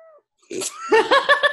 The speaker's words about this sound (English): Hi, Morris. Annie's cat has joined the chat.